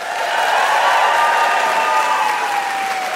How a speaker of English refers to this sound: Shoreditch Town Hall, please give the biggest round of applause for our very own dancing queen